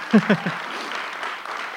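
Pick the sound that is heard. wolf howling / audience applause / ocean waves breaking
audience applause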